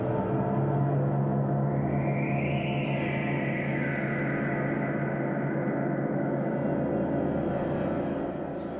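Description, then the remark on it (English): A prepared guitar played through a reverb pedal makes a thick, steady drone with dense metallic overtones and a brief rising swell early on, staying loud and continuous throughout before easing slightly at the end. “This is some prepared guitar for you all out there.”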